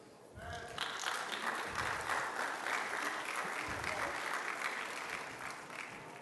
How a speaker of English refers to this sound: Come on stage. Y'all cheer for them.